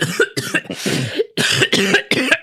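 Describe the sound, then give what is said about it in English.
A loud coughing fit: a rapid series of harsh, raspy coughs in quick bursts, one longer rattling cough in the middle, with no talking. “Would you like some cough syrup?”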